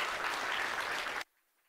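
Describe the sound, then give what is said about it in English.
A crowd claps together in a dense, steady burst of applause during a morning worship service, giving God a clap; it stops abruptly after about a second, leaving near silence. “Give God a clap this morning.”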